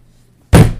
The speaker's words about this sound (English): 3 loud pounds came from the front door.